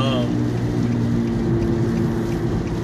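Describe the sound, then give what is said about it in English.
A steady car interior rumble while driving, with a low engine drone and continuous wind and road noise, holding an even loudness throughout with no distinct events. “Whenever you hear the wind blow and the blinker and shit in the background, I am driving in my car.”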